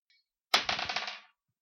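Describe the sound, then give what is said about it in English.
Dice clatter onto a hard tabletop with a sharp first impact, then a quick run of rattling clicks that tumble and fade out within about a second. Fairly loud, with no talking. The dice are rolled in a game to check a desk drawer for traps, coming up 12. “I'll check it for traps and open it. Give me a roll.”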